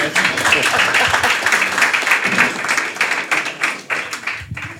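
Dense, sustained clapping from a large audience welcoming a guest, loud, filling the space evenly for several seconds before tapering slightly near the end.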